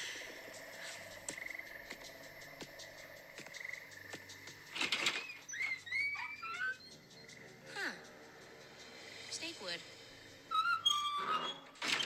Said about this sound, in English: Squeaky door.